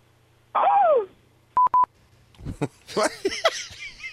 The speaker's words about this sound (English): Oh! What? You goose yourself there? Hold on, let's hear that horn one more time. Self honk.